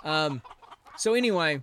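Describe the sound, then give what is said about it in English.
A chicken squawks in two loud, close bursts: a short harsh cackle, a brief pause, then a longer rising squawk that trails off. No other sounds around it. “So, and that does deserve a chicken because I went off on a tirade.”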